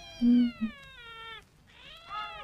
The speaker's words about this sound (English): The cats are dubbed. Even the cats are dubbed in this. We watched the dubbed version of this, and the cats are even dubbed, and they are really annoying. I mean, it's really annoying.